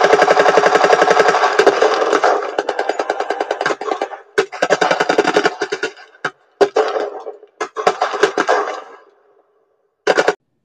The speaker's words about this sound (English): Gunshots rang out in the lot, and Brotherhood of Iron guards drew weapons and ran for the source of the sound.